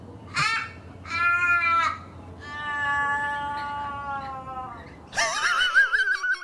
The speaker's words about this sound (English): What's wrong with your animal? The Australian crow sounds so depressed. Oh, So we don't have ravens, we have crows. And they're that's what they sound like.